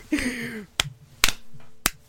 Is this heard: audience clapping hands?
yes